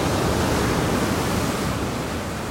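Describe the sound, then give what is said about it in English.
A steady, full roar of ocean surf washing against the shore at Carmel-by-the-Sea at sunset, broad and continuous with no distinct individual crashes, fairly loud, with no voices. “tripping out with the ocean.”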